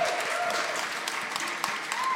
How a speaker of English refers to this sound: Give an applause for Rue McClanahan, guys, please.